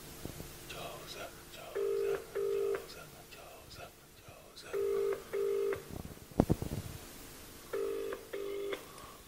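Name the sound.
telephone call ringing tone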